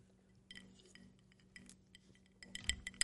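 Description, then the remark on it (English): A baseball-sized ice cube knocks and clinks against the sides of a cocktail glass in a string of irregular taps that grow busier and brighter toward the end, over a low steady hum. “All I hear is old-fashioned. That one ice cube in there growling around.”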